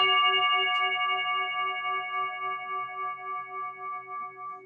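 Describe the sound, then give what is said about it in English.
A bone is struck once with a wooden mallet, leaving a long, bright ring of layered overtones that slowly fades with a gentle wavering pulse. No one speaks. “As I use a harder mallet, like a wooden mallet, then you can hear overtones.”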